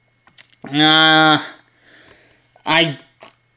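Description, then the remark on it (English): Two loud, throaty coughs from one person, strongly voiced. The first is long and drawn out, the second shorter and harsher, with a quiet gap between them. “I mean, even the thought of that just made me cough.”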